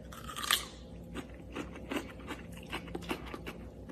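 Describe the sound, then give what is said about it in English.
A crisp bite into a big, plump, firm cucumber, with a sharp snap at the start followed by a steady series of wet crunching chews, moderately loud with no talking. “you take a bite.”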